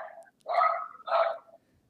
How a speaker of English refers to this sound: Sorry, I'm at my sister's house and there's dogs here.